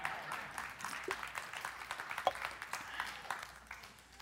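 An audience applauds steadily, a dense wash of many overlapping claps keeping up a fairly even level before easing off slightly toward the end, with no voices standing out.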